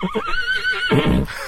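A horse whinnies loudly, a sustained quavering neigh that ends in a lower, breathy snort.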